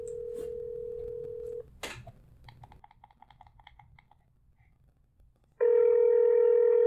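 A steady dial tone, then a click and a quick run of beeping keypad tones as a number is dialed, followed by a loud, sustained ringing tone on the line. No one speaks.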